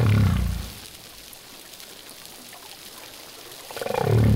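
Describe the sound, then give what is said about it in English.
Humpback whale song recorded in 2002: a deep, loud bellowing call opens, fades into a quiet underwater hush, then another strong low groaning call swells up at the end. “In this theme, we've got a bellows. That's that sound. And then three croaks.”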